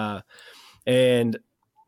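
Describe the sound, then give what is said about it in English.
A cat named Percy meows twice, wanting to be let into the bathroom, a short cry followed by a longer, drawn-out one after a brief pause, fairly loud against an otherwise quiet background. “am I hearing a cat in the background? That is, yes, that's my son Percy.”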